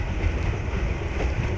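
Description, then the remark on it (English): A steam train, from a record on Transcord Records, runs along the rails with a steady rumble and rattle of wheels, continuous and fairly loud throughout, with no voices. “It's different kinds of trains.”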